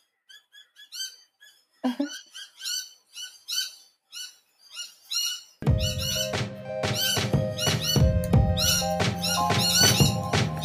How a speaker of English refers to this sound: They're parrots. I just can't tell which ones. They all decided to come out.